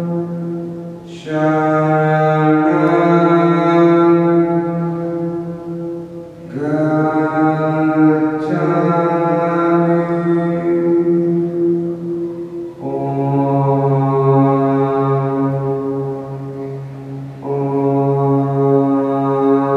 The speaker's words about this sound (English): One of my favorite moments was when we were in one of the caves. A local man chanted for us and demonstrated the amazing echo inside.